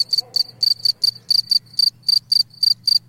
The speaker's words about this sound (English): that the sounds people were hearing were coming from the chirping of Jamaican field crickets.